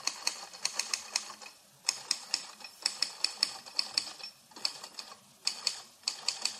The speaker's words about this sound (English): Frustrated, broke, he moved in with his father in St. Paul and pounded the typewriter keys some more.